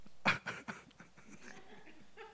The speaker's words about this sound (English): I heard some snoring. I was like, what is that?